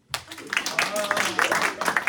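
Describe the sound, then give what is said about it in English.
An audience bursts into scattered clapping that swells into steady applause for about two seconds, with a few voices calling out over the claps, clapping to vote that a pair of shoes being shown is chic. “Clap if you think these are chic.”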